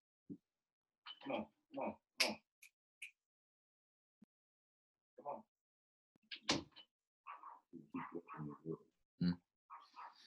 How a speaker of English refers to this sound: let me get this dog out of here. Come on, dude.